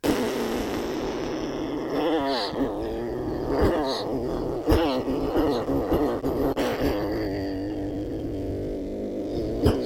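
A low, raspy buzzing drone made by breath through the lips using circular breathing, sustained without a break for about ten seconds, its overtones wavering and occasionally punctuated by short sharp accents.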